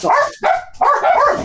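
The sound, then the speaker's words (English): A dog barks three times in quick succession, loud, each bark drawn out with a slightly whiny, yelping tone. No one speaks. “Even the dog agrees.”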